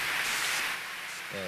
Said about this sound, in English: Wow, I did the applause way too loud there. That's so Zoom could hear it.